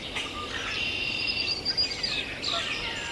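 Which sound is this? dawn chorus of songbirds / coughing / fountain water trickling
dawn chorus of songbirds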